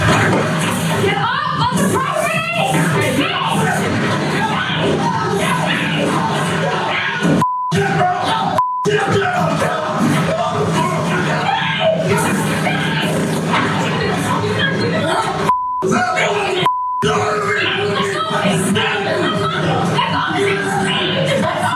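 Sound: woman screaming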